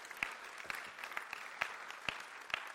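A church audience applauding to celebrate those who prayed a prayer that morning: a steady, fairly soft wash of many hands clapping, with a few sharper individual claps popping out at irregular moments. No one speaks over it.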